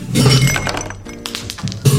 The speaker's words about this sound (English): Fill a tall glass with ice.